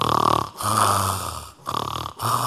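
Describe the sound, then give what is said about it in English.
Loud, rasping snoring: several back-to-back snorting breaths with short silent gaps between them, no talking. “You know, women snore too.”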